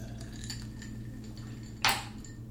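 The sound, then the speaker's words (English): Someone takes a quick swig of water amid a low hum, with a single short glassy clink midway as a glass or bottle is handled. No one speaks. “I'm going to take a quick swig of water.”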